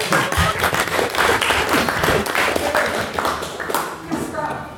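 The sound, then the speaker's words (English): An audience applauds steadily for several seconds, a dense wash of clapping that stays fairly loud throughout, with some murmuring voices mixed in underneath. “But applaud him.”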